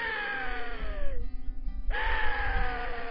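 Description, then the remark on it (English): An axis deer call, made with a call developed for axis deer hunting: two loud, drawn-out wailing tones that slide downward in pitch, separated by a short pause, over a low rumbling background. No talking. “He has actually developed axis calls.”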